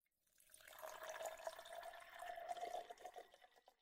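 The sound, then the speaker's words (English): 14-year whiskey pours steadily into a glass for a few seconds, a gurgling stream with a faintly rising pitch as the glass fills, then trails off. No one speaks. “I'm going to go ahead and pour this 14 year.”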